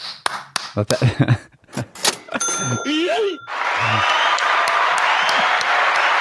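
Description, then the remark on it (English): After a few seconds of talking and a quick string of short electronic sound effects, a recorded applause sound effect takes over, dense and steady clapping that carries loudly through to the end. “I had to go through a few sound effects there to find the clapping one.”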